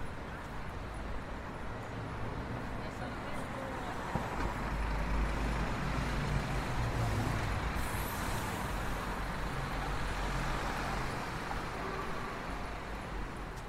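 Steady roar of busy street traffic on Piccadilly, cars, buses and trucks passing in a continuous wash of engine and road noise, with a faint hiss of air brakes, heard while walking along the south side of the street.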